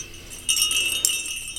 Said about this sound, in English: So what would you use jingle bells for in the classroom?